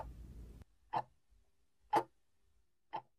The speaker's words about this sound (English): Next, listen for three things you can hear. Maybe the ticking of a clock.